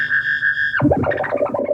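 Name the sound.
whale sounds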